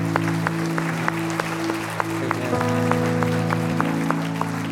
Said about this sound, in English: Let's give the Lord a clap praise.